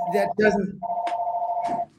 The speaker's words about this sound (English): Sorry, is that your phone? Someone's going to get that?